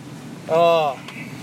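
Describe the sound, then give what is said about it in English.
A single short engine rev from a four-cylinder pickup truck swells up and drops away over about half a second, rough and throaty, rising briefly above a low background rumble. “revving his truck to show his tiny pecker off”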